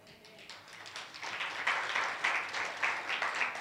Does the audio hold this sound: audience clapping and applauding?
yes